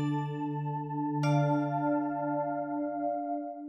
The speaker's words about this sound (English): You can tell when the scenes begin and end because of our cool chime noises.